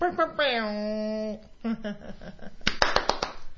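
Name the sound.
hand clapping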